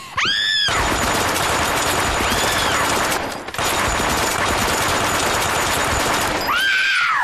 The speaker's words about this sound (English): He machine guns her pod as she screams.